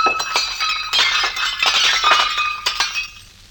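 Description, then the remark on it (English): A dish shatters with a bright crash while dishes are being dried, followed by a scatter of clinking, tinkling shards settling over a few seconds before fading out. “Just kind of drying dishes. And I haven't broken...”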